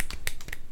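A few soft, quiet hand claps in a slow, unenthusiastic rhythm, a polite little golf clap with short, light slaps spaced evenly apart.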